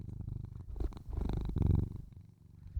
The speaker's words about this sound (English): Now that was for his fans. That was a special purr for his fans. I hope you guys appreciated that.